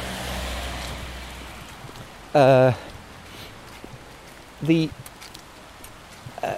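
A steady, even hiss of rain falls throughout, with no pauses. Two short, loud vocal bursts break through near the middle, sounding like a voice without clear words.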